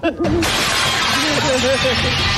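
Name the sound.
window glass shattering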